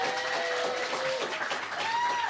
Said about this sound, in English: So one round of applause for everyone that performed tonight.